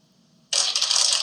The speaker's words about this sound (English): Oh, what? Is it really that loud? It's really loud. I'm not going to lie. You should see, like, the soundboard. Like, it jumps and spikes up whenever you crinkle the paper. Do it again.